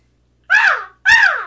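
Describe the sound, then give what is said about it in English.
A voice imitates a crow, giving two loud, harsh caws, each lasting about a third of a second with a short pause between them. “Crow is the oh, caw.”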